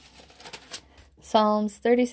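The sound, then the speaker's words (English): Soft papery rustling and crinkling as thin Bible pages are flipped back to Psalms 37:23, a few quick brushing bursts, followed by a person's voice speaking. “You can probably hear my pages turning as I'm getting there.”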